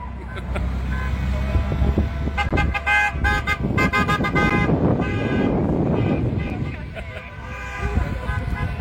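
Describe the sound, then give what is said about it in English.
Heavy trucks rumble past in a steady stream while several loud horn blasts sound in quick succession, some overlapping, over constant road noise and wind buffeting the microphone. “This line of trucks is like never ending.”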